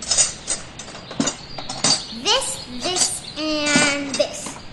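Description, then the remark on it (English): Metal pots, pans, wrenches, forks and spoons clink and clatter in irregular bursts in a garden, fairly loud, while a high, childlike voice babbles and squeals over the clanking. “with an assortment of pots, pans, and wrenches, forks, spoons”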